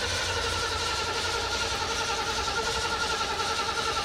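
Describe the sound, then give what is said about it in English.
A car engine fitted with an Edelbrock carburetor cranks in a steady, rhythmic churn, loud, holding an even pulsing drone for several seconds with no voices over it. “You want to fire Let's it up? Let's fire it up.”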